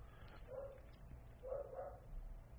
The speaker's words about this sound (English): She's not getting up. But this means she's going to just sit where she is and just bark.